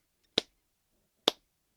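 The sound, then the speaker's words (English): Two soft, crisp claps spaced almost a second apart, a slow, quiet golf clap with silence around each one and no talking. “Golf claps for me.”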